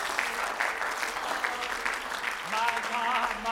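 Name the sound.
audience clapping hands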